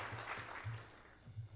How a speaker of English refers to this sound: And I think as he's coming up, we should give him a round of applause.